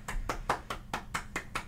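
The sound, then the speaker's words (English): Eight quick, evenly spaced hand claps, like one person applauding at a steady rhythm, applauding Kimbrough for closing a baseball game for the save; crisp and moderately loud with no talking. “We'll applaud him there.”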